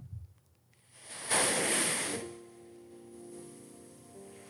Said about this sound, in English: This one is called Elevate Ocean Sounds.